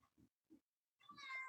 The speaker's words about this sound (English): And we got to talk about your cat. We just heard your cat talking. Oh. Your cat definitely wanted to add to that.